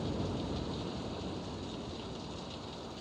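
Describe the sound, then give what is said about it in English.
Heavy rain pours down harder and harder in a dense, steady roar, with a deep low rumble like thunder underneath, loud throughout with no voices. “The rain coming down harder, harder.”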